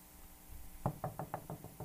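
knocking on a door

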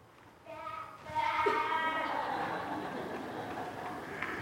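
sheep bleating

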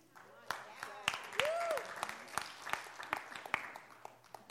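audience clapping

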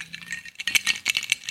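ice cubes rattling

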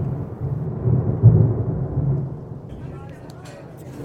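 rain

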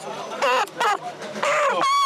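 chickens clucking

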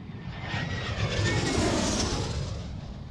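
airplane taking off

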